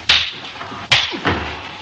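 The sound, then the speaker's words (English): Two sharp, loud slaps to the face in a movie scene, under a second apart, each a crisp bright crack, as one man slaps another and is slapped right back. A duller, softer smack follows shortly after the second. No one speaks. “Slaps him right in the face. And then Sidney slaps him right back.”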